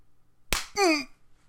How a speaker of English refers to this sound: Well, let me give you a slap.